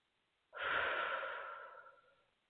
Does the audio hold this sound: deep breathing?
yes